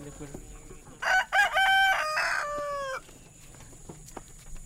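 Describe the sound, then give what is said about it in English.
A rooster lets out one loud, drawn-out crow, rising and then trailing off over about two seconds, with quieter chicken sounds and light background noise around it, on a hot Saturday afternoon at a community garden in Comer, Georgia, where a woman is feeding chickens, hens, goats, and ducks. “feeding her chickens, hens, goats, and ducks”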